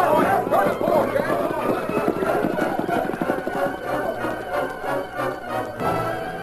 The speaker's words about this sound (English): the riders started shooting and yelling. That's it. Got them moving. A few minutes, the half-wild longhorns broke into a run